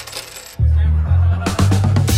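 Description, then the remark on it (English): A barman in a pub slaps coins of change down onto the bar, a quick run of sharp metallic clinks and rattles over a steady low hum. “Mutton watched the barman put the bodgy note in the till and then slap the change in real currency on the bar.”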